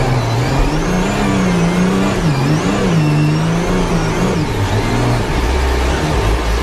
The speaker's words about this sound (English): I want you to take a listen to this. It's an onboard recording from one of the Red Bull cars in 2019.